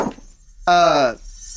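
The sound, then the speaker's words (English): A single loud burp lasts about half a second, with a low, buzzy, voiced tone that starts abruptly and cuts off cleanly, surrounded by near silence. “A burp.”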